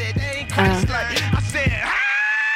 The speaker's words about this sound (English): Is this the one that ends with him just screaming weird? I think this is what, huh? He just starts screaming weird.